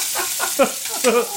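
Hot grease sizzles and crackles steadily while frying, a dense hiss with brief sharper pops and a couple of louder spits around the middle and near the end.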